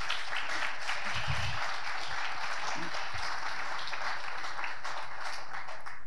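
A church audience applauds their pastor steadily for several seconds, a dense, even wash of many hands clapping at once, with a few low murmurs and stray voices mixed beneath it.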